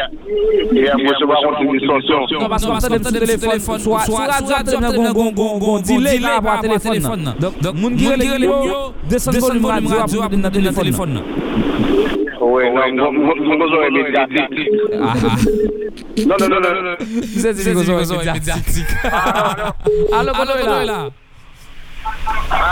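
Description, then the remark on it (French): A loud, distorted radio transmission with garbled, tinny voices running almost continuously, harsh and compressed, briefly dropping out near the end. “Non, seulement c'est distorsion à gérer.”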